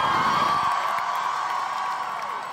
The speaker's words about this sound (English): And we'd just like to acknowledge how massive this crowd is, everyone!